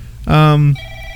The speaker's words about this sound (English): Your phone's ringing again. Yeah.